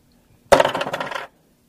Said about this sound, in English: 1d6. That's normal dice. 5. Roll it again